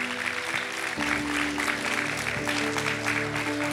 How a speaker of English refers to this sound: Can we give Pastor Robert Morris an amazing hand clap?